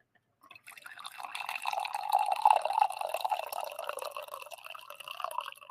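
Coffee pours steadily into a mug, a continuous splashing trickle that starts abruptly after a brief silence and keeps a bubbly, gurgling texture throughout with no voices.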